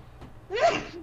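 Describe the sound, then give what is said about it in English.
A single sharp sneeze, fairly loud, preceded by a brief quick intake of breath and trailing off into a short breathy tail. No talking. “See, you're allergic to me. You're sneezing.”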